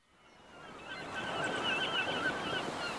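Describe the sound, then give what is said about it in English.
Several seagulls cry repeatedly in the background over a steady wash of surf or wind, with the sound fading in from quiet and holding at moderate level. “Dramatic rendition and background seagulls performed by yours truly.”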